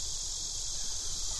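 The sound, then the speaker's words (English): A steady, unbroken high-pitched drone of cicadas buzzing outdoors in Rochester during a cicada year, filling the background evenly throughout, with faint low rumbling beneath and no one talking. “As you can hear, it's a cicada year in Rochester.”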